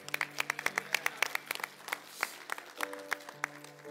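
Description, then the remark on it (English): A church audience claps together after a prayer releasing a woman into a new church assignment, a brisk scatter of overlapping claps that keeps up for a few seconds, with a steady low sustained tone humming underneath. “And as, are you going to clap?”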